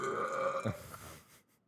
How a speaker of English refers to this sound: Come on, man. Burping up all that liver. Come on, boy.